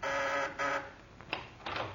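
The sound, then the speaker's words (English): A doorbell rings at nightfall in two bright, buzzing bursts, a long ring and then a short one, followed by a few soft clicks and rattles. No one speaks. “The doorbell rings.”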